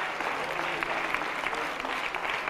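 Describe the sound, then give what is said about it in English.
A church audience claps their hands at a preacher's call during a sermon. The applause is a dense, steady burst that stays loud and even throughout, with crisp overlapping claps and a faint crowd murmur underneath. “Come on, clap your hand.”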